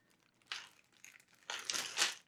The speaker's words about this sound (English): I took the dice out, but I didn't take them out of the bag.